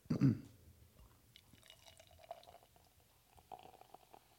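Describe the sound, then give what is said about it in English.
Beer pours into a glass after a short thud at the start, a steady gurgling, splashing stream with a soft fizzing hiss over a few seconds. “Let's get this poured.”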